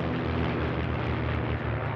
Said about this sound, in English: The ceremony begins when planes fly overhead and perform a maneuver known as the missing man formation.